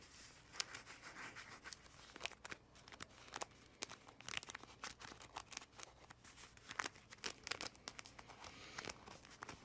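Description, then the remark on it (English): Paper pages of a book being flipped and handled, giving a steady run of dry, crinkly rustles with sharp irregular bursts. It is fairly quiet and no one speaks. “And when we flip the page again,”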